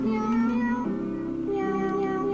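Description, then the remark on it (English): A cat piano toy plays a short melody of synthetic meowing notes, three sustained pitches stepping one after another, loud with no talking. “You can see his Cat Piano Classics written on there with a little Sharpie.”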